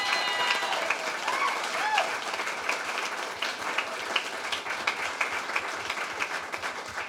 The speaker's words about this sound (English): And honestly, one just fat, fat, wonderful round of applause for the staff of Black Kettle. Thanks for hosting us.